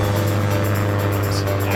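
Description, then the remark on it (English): A short airplane-themed jingle for a segment about films watched on a plane: a steady, loud jet-cabin engine drone with a deep constant hum, continuous throughout with no music beat or clear voices. “Oh no, it wasn't a plain film jingle, was it? It was a what films did you watch on a plane? Yeah, jingle.”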